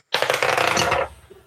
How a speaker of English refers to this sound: Can you roll a D12 for me?